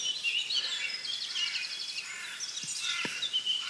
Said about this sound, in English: really, really thrilled to hear two wood warblers. You might be able to catch them. Someone described it as a spinning £1 coin on a ceramic plate. Which is quite accurate, I think, but there's a lot of blackcaps, blackbirds, a few chaffinches around.